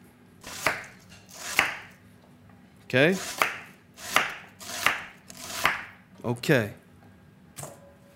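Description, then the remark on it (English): A knife chops celery root into large dice on a cutting board, about ten sharp, crisp strikes at an uneven, unhurried pace, with brief quiet gaps and a faint voice murmuring between cuts. “Next is the celery root. You dig? And the same way we did the onion, the same way we're gonna do this, the celery root. Large dice.”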